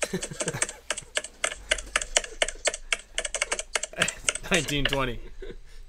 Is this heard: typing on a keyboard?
yes